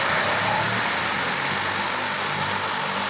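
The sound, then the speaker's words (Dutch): A Volocopter multi-rotor passenger drone from the German company Volocopter, fully electric with 18 rotors, flies at the Drone Week in the RAI with a steady, loud whirring hum, a dense rushing noise layered over a low droning tone that holds unbroken for about three seconds, with no voices. “Nou, zo klinkt hij dus, de Volocopter.”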